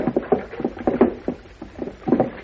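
A boat moves through water with a steady series of close, rhythmic splashes and sloshes, like oars or paddles dipping again and again, with no voices.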